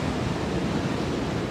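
A steady, broad wash of Atlantic Ocean surf rushing on a beach, with no distinct single crash, just a continuous roar of waves and no voices.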